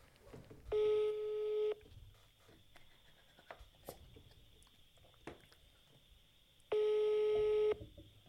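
A phone's ringback tone, heard while calling someone and waiting for an answer, sounds twice, each steady buzzing tone lasting about a second, separated by a long pause filled with faint background noise and small clicks.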